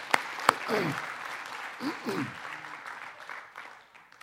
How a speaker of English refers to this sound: And I think we need to just applaud the Lord for the gifts because we do church as a team. Amen? Let's just applaud the Lord for...